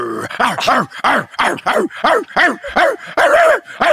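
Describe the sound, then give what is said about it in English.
A man's voice imitates a furious mad dog, barking and snarling in a rapid string of about a dozen harsh, loud barks with growly breaks between them. “Here's my mad dog.”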